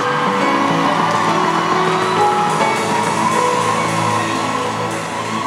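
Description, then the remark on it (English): A large standing crowd cheers, shouts and claps to welcome the father of the house, a loud, dense wall of noise that holds steady for the whole stretch before easing off slightly at the end. “Please shout, clap, welcome him here.”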